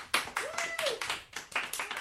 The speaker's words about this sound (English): Wow, restrained golf claps for both.